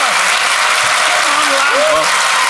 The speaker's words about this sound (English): Let's give everyone a big round of applause. Ladies and gentlemen... Here's The Goodies, Tim Brooke-Taylor, Graeme Garden. Bill Oddie.